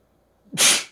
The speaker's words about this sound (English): Excuse me. All right. Got to edit out that sneeze later. See if I forget.